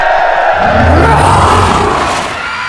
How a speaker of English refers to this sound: Attention, grown-ups! I cannot solve your problems while you are shouting! Please quiet down!